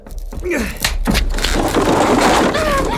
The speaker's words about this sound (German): Ich werfe mich gegen die Tür.